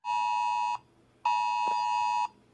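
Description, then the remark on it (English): A phone's Amber Alert emergency tone blares in two long, steady, piercing blasts separated by a brief pause, loud, with no one speaking. “It's an Amber Alert.”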